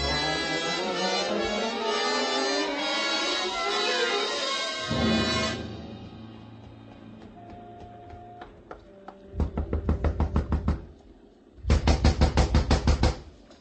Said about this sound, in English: Gentle knock does it